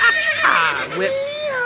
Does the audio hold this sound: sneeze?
no